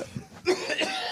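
Two short, harsh coughs in quick succession, close by and fairly loud, with a faint throaty rasp just before the first and no talking.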